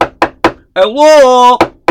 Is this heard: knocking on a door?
yes